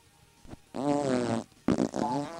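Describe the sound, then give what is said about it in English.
Two loud, buzzing fart sounds, each under a second, with a brief pause between them, made by a person blowing a wet raspberry to imitate flatulence. “No, my farts are more like this.”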